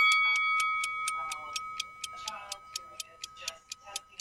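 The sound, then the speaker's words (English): A bell rings with a rapid, steady train of metallic strikes over a sustained high ringing tone, continuing for several seconds while voices murmur faintly underneath. “I thought it was a bell for me to be done.”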